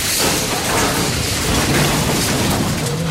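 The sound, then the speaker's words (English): The Night Cruiser car smashes through the wall of a cell at Cityopolis's Correctional Center for Women in a loud, sustained burst of crashing noise and rumbling debris that roars steadily for about three seconds, with no voices. “Suddenly, the night cruiser smashes through the wall of the flying pig's cell.”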